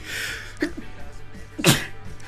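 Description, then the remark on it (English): A loud sneeze from someone who has a dog and is allergic to dogs, with a smaller catch of breath just before it, over a faint steady background hiss. “Oh man, that's what you get for having a dog and also being allergic to them, you know, and asthma.”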